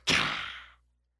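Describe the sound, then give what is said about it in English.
A voice imitates a lightning crack: one sudden, loud, hissing burst of breathy noise that starts sharply and fades over under a second, with no talking. “That's the best lightning impersonation I've ever heard.”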